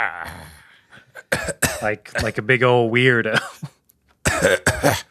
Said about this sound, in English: You all right there? Huh? Have you de-witched yourself? Yeah, no, I had to cough that witch out of my throat.